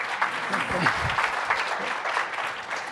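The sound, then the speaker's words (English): A crowd applauds the panelists steadily for a few seconds, a dense patter of many hands clapping at moderate volume, without pause. “A quick round of applause for our panelists here.”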